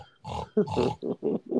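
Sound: pig grunting and oinking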